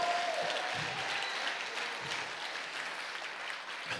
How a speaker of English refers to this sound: Somebody clap your hands and give him a praise.